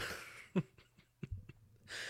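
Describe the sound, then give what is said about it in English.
A quiet, drawn-out yawn: breathy inhaling and exhaling at either end with a few soft throaty catches and clicks between, without any speech. “And we're yawning.”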